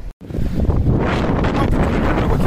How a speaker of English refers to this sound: It is windy. I'm outside. I'm at Malibu, or in Malibu still.